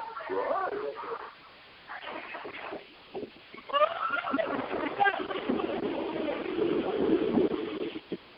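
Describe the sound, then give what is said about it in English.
People talk and call out as the Splash Mountain log flume ride moves along from the top of Chickapin Hill, then a sustained, loud rush of splashing water takes over for the last few seconds, with voices still faintly mixed in. “calling from on top of Chickapin Hill on Splash Mountain. That's why you don't want to take a ride with me.”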